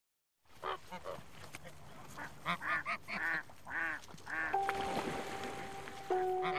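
A flock of geese honks repeatedly, the nasal calls overlapping in an uneven, busy chorus against outdoor background noise, with a steady droning tone joining toward the end.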